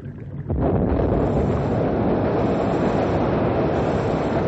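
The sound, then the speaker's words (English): A sudden loud blast about half a second in, followed by a sustained, heavy roaring rumble that keeps going without letting up, as an explosive charge set off with a wired plunger blows up an ice jam on a river, sending chunks of ice flying and the jam moving down the river. “Set now to blow up the jam.”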